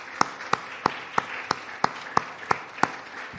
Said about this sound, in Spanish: Démosle fuerte aplauso al Señor.